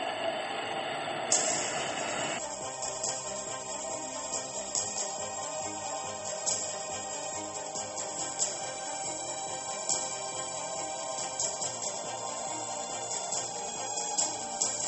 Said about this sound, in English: And this crowd is going crazy here at Busch Stadium. His teammates greet him at home plate. Number 51 against the Cubs. Listen to this crowd.